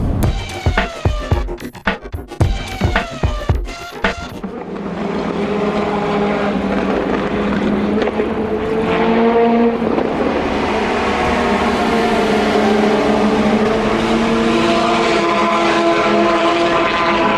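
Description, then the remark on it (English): Endurance racing cars speed past at the Le Mans race weekend: a few quick rising and falling engine whines at first, then a loud, continuous roar of engines that holds steady to the end, with no talking. “The reassuring sound of endurance racing cars, the soundtrack to the weekend at Le Mans.”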